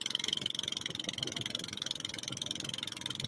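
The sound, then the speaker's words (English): A boat motor runs steadily with a buzzing, rapidly pulsing drone and a bright whine on top, continuous throughout, with no one talking. “Okay, that must be Iwo Jima because the motor sounds like on the boat that they're watching this thing go off.”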